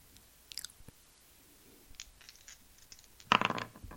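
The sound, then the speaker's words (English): A six-sided die rattles and tumbles across a table: a few scattered clicks and light taps, then a louder clattering burst near the end as it settles. No one speaks. “On the table in front of you is a 6-sided die. Say roll to roll the dice.”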